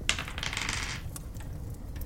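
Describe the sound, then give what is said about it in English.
Dice rattle across a tabletop in a quick clattering burst lasting about a second, followed by a couple of sharp, isolated clicks as they come to rest. The dice are rolled for a knowledge religion check in a tabletop role-playing game, and the roll comes up 16. “I'd allow a knowledge religion, but you'll need to roll decently.”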